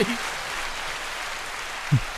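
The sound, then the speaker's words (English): A steady wash of audience applause at the first annual Needless to Say Slackademy Awards, dense and crackling, holding at an even level throughout with no pauses; a couple of brief low voice fragments poke through at the start and near the end. “I didn't think that round of applause was going to end.”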